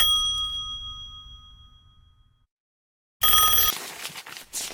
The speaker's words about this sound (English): It's him again. Switch off the phone sound.